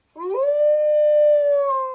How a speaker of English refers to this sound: The wizard knows this giant is afraid of wolves, so he quickly creates a magic spell to make it sound like a wolf is coming into the forest.